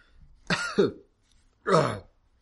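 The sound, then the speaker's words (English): A person coughs three times: two quick, rough coughs in succession, a brief pause, then a longer, harsher hacking cough, with no talking. “And I cough out a miniature mushroom cloud of dust.”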